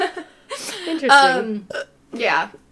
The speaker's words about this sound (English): burped.